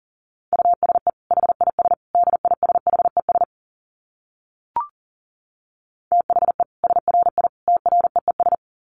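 Fast Morse code at 40 words per minute in a single steady mid-pitched tone, keyed in quick dits and dahs. Two long runs are split by a few seconds of silence broken only by one brief click.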